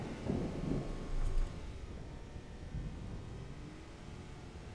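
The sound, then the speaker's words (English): A low, distant rumble of thunder rolls through, swelling briefly near the start and then fading into a steady, muffled background growl. No voices are heard. “And thunder in the distance.”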